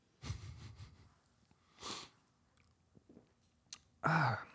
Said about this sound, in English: So what happened is that, let me just take a sip of this Croatian beer.